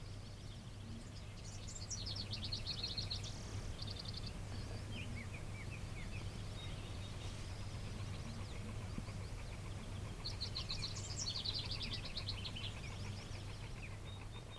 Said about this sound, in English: I'm hearing house wrens. I'm just trying to distract you from the one that I don't know. The nice warbly sound is house wren. It's a house wren, okay.